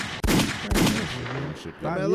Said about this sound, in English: Some gunshots.